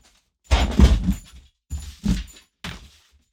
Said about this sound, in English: Let me shut the door.